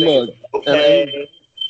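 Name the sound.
smoke alarm beeping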